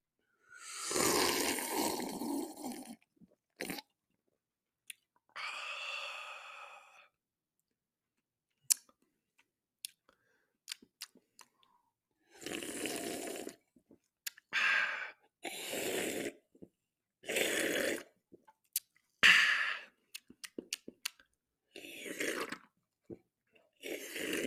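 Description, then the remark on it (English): Sipping a 1-ounce taste of key lime sparkling water from a 12-ounce can: several loud slurping gulps in bursts, separated by pauses filled with small sharp clicks and breaths, with no talking. “1 ounce drink of the key lime liquid.”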